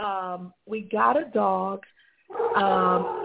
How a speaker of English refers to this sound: There's my dog, Lucky. Oh, Lucky. Oh, and I forgot to say, we got a dog.